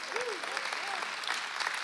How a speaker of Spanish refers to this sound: Ese hermano está encendido. Dele un aplauso.